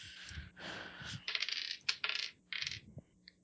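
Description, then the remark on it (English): Dice, rolled for an interfacing check during a game, rattle and tumble across a hard surface in several quick bursts of bright, clicking clatter, the last few knocks settling into faint ticks. No one speaks. “Yeah, roll interfacing.”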